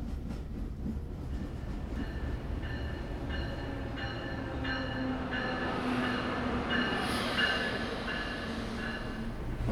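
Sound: train riding on rails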